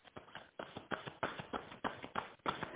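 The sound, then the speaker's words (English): A steady series of dull taps, roughly three per second, as knuckles rap on a deck of cards during a card reading. Each knock is short and soft-edged, with no voices. “Knock cards. What's coming in?”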